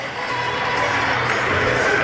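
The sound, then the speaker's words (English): A big crowd in a gym at Fox Valley Lutheran High School in Appleton roars loudly and continuously at a high school playoff basketball game, cheering for the Foxes, a dense wash of cheering that stays steady for the whole moment without any single voice standing out. “Shooting the lights out here in front of a big crowd, a big loud crowd here for the Foxes.”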